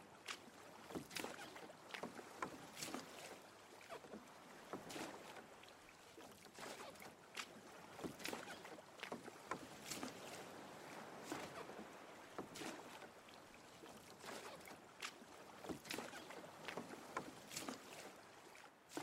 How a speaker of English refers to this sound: After pushing out the boat, perhaps you take an oar and begin to pull the boat out into the lake. It's heavy going.